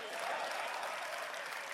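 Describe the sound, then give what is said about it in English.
A crowd claps for the photographers, steadily, a dense and even wash of many hands with no pauses, loud throughout the short burst. “And clap for the photographers.”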